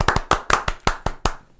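hand clapping

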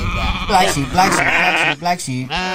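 sheep bleating

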